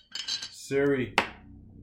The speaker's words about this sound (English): I will pour another shot.